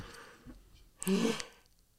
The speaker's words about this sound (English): Is that a good yawn, listener? You enjoyed that?